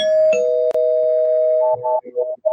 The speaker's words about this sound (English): So let me just ring the bell in 3, 2, 1.